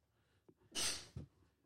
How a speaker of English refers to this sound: Bless you. Thank you, sir.